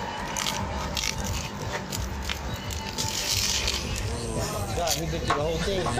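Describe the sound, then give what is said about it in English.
Crackly crunching of someone biting into and chewing a crispy layered taco, continuing steadily for several seconds while voices murmur in the background. “You gotta hear the crunch.”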